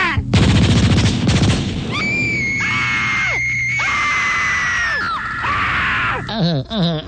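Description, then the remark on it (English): A loud, rapid full-auto machine gun burst rattles off for over a second, followed by long, high-pitched wailing screams that rise and fall. “I'm full auto. Just one. One. Brap, brap.”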